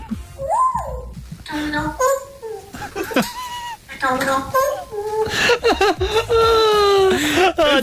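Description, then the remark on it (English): A parrot talks in a shrill, squeaky voice, mimicking human speech, repeating a word with warbling whoops and chirps between, loud throughout. “So at the beginning, don't worry, that's just the parrot.”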